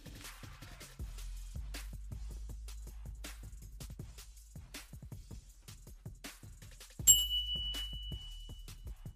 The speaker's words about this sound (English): Bell ring, I'll go ring the bell. You want me to ring the bell? Let's go ring the bell.